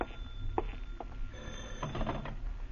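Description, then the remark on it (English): A telephone rings faintly, its bell coming in short bursts over a low background hum, with no one speaking. “By noon, you still have no answer, and then the phone startles you, but you manage to answer.”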